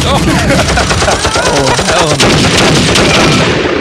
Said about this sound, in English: feel free to cue the gunshots on that one, huh?